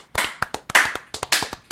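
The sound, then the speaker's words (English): Scattered hand claps from a small crowd, sharp and uneven, with several overlapping bursts of applause over a couple of seconds and no voices; applause for the members of a band after their first single. “This applause right now is for all my best friends in this band with me.”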